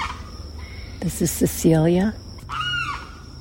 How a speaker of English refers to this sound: And that is a limpkin sitting atop a bush and making a lot of racket.